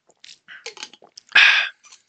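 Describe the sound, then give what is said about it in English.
Someone drinks water: a series of small wet sips and swallowing clicks, then a loud breathy exhale after the gulp, with a couple of faint mouth sounds trailing off. “Excuse me for 1 second, I gotta drink water.”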